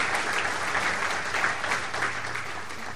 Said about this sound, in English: Yes, please. She deserves all of your applause.